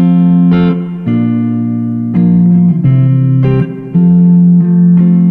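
A song's instrumental intro plays loudly, with sustained, droning chords that shift to new harmonies roughly every second, and no voices over it.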